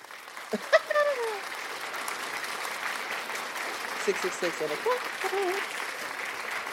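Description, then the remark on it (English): A crowd claps steadily throughout at a speaker's request, a dense, sustained patter of many hands, with a few voices calling out and cheering over the applause. “Clap for me again.”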